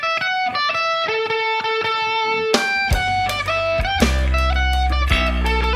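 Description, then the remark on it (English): A loud electric guitar through a fully cranked Twin Reverb amp into a Mesa cabinet plays ringing chords and sustained notes with effects, joined midway by deep, heavy low notes that swell the sound. No one speaks. “It's a twin reverb dimed and going to a Mesa cabinet.”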